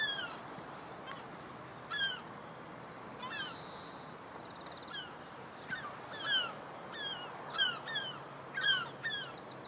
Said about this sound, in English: Oh, there's loads of seagulls up there.